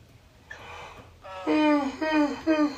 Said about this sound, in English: Oh man, why am I fucking yawning?